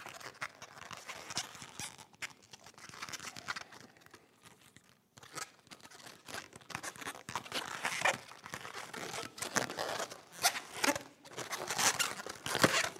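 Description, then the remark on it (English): A balloon animal, a parrot, being twisted: irregular rubbery squeaks and crinkly creaks in quick bursts, with a brief pause midway, then growing louder and busier. No one speaks. “So, y'all can come to the next training for balloon animals, and we'll teach you how to do those and like one or two other ones.”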